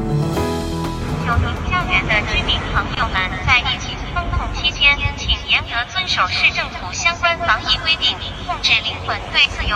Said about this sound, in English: In case you missed it, we played that yesterday. That's a drone flying over the city of Shanghai.